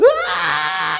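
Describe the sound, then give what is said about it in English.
A voice imitates the high, piercing scream of a three-year-old girl who bent her finger in a Panera Bread, rising sharply and then held steady for about a second before cutting off, loud. “It's like a scream that just lasted for eternity.”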